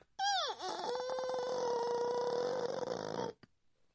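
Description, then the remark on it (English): A single drawn-out, dog-like whimper or whine from a chained dog, dipping in pitch at the start and then holding a steady, strained tone for about three seconds. It is loud, with no talking. “Obviously, you got past the guard and the dogs.”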